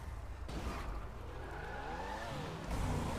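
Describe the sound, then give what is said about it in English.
A car engine in the video game Grand Theft Auto role play revs and whines, its pitch sweeping up and down with tire skids, broken by two abrupt loud bursts like collisions as the car crashes. It is steady, with no talking. “He's playing Grand Theft Auto role play where he ends up getting in a car accident, and then this is his reaction.”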